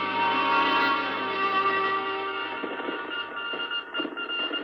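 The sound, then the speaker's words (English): A Morse code radio transmission of an SOS message, heard as sustained electronic tones buzzing through steady static, fairly loud, with the signal wavering and breaking up toward the end. The message started on voice and switched to Morse. No one speaks. “Started on voice and switched to Morse.”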